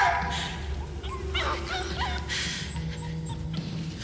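A small dog barks and yips in quick, high-pitched bursts throughout, loud, with a few whimpering notes over a steady low rumble in the background.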